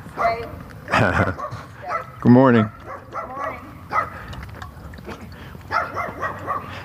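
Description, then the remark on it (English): An unleashed chihuahua and black labrador, out on a walk, bark in a few short bursts, sharp yips mixed with deeper woofs, while a person speaks a brief greeting and calm words. “You get a little chihuahua and a big black lab. Neither one with leashes, and both of them seem really interested in me.”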